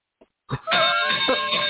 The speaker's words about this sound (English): Okay. All right. Ring the bell first